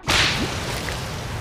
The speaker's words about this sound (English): And he fell, crashing down towards the theme park. He belly-flopped into the man-made lake, and the slap could be heard for 30 miles in every direction.